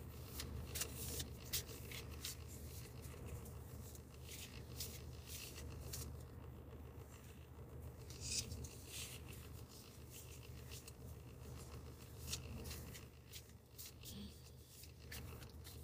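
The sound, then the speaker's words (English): A deck of cards being shuffled, a steady flurry of crisp, papery flicks and riffles running continuously over a low background hum, with no one talking. “I am shuffling.”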